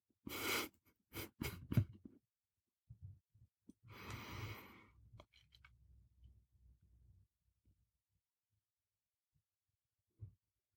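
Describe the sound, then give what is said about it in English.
Quiet breathing during a breathing exercise: a few short, sniffing breaths at first, then one long, airy exhale, followed by soft low rustles and thumps. There is no talking. “So do a few breaths and then we'll talk about how it feels.”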